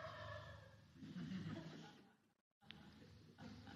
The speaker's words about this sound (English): Including the turkeys. This is the most turkey period of the year, March. They are in the business of creating new turkeys, and they fight about it, so that's what's going on.